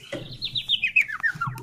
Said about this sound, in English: Okay, can you hear this? Cartoon birds. Was that loud?